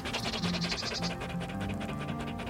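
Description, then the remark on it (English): A hot dog pants quickly and steadily, a rhythmic series of short breathy huffs running throughout with no voices. “A hot dog.”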